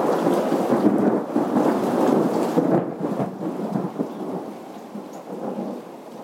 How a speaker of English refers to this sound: But Turner kind of slalomed his way through all his camps, and luckily because there was a violent thunderstorm.